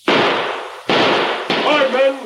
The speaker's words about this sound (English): Where's that shooting coming from? The woods. That came from the south.